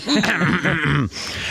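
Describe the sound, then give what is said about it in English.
A man switches on his microphone and clears his throat into it to get attention, a voiced, rumbling rasp lasting about a second before it cuts off into faint background hiss. “He turns the mic on to clear his throat to get the attention.”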